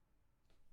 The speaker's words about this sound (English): That's a me slapping my forehead.